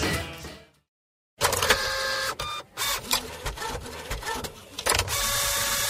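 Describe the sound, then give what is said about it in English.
A printer whirs and clatters through a printing cycle, its mechanism buzzing and ticking in bursts after a brief silent pause, fairly loud with no voices. “The printer in your home or office is often a loss leader, sold well below cost.”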